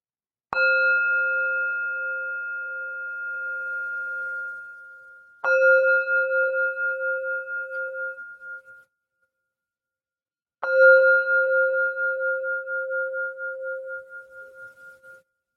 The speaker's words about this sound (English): And so now I invite our formal practice with the sound of the bell.